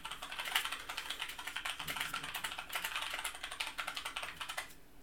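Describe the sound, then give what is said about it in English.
Rapid, steady clicking of a computer keyboard being typed on, moderately loud, with bursts of keystrokes running continuously for several seconds and no voices. “You guys just love that clicking noise, don't you?”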